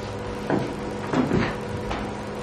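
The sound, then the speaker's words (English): A door is pushed shut with a few soft thuds and scrapes in quick succession, over a steady low background hum, with no voices. “Okay, we're gonna have to close that door.”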